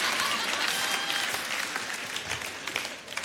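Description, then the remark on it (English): Scattered, modest applause from a church audience, only those who have given to the church's $15 million campaign clapping; a soft steady patter of many hands clapping at moderate volume with no voices over it, thinning slightly toward the end. “It's a quiet clap because only those of us who gave clap.”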